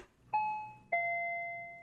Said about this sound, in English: That's a warning bell.